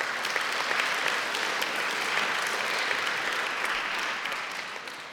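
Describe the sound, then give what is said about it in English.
A church audience gives a hand clap of praise to the Lord, breaking into steady, dense applause, many hands clapping together in a sustained wash of sound that holds for several seconds and then begins to taper off. “Can we give a hand clap of praise to the Lord for that?”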